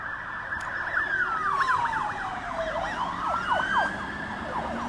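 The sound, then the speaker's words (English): A Santa Monica fire engine siren passes, its wailing tone sweeping slowly down and back up while a rapid yelping pattern overlaps it, loud and steady over a constant rumble of traffic. “And they are Santa Monica's fire, Santa Monica's finest.”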